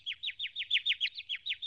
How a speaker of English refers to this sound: Bet you can't hit that bird from here. Are you crazy? I don't want to shoot a stupid bird.